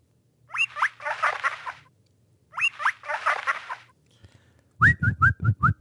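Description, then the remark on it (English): A person whistles an imitation of a guinea pig: two bursts of chirpy, squeaky whistling, then five quick, evenly spaced high squeaks at the end. Fairly loud, with no talking. “this is a guinea pig.”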